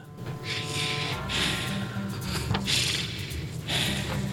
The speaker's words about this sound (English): your hat is breathing. No, that, oh yeah, it's because there's water in it. It's still breathing.